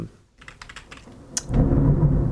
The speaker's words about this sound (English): Oh, it sounds like a thunderstorm. It does. That's on my end.